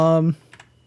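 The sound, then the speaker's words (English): A short voiced groan gives way to two quick, light taps on a computer keyboard, fairly soft, about a tenth of a second apart. “Dude, I am not even kidding, but now my keyboard is like refusing to work.”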